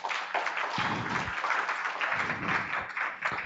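An audience applauds steadily, a dense wash of many hands clapping at once that holds an even, fairly loud level from start to finish with no voices standing out.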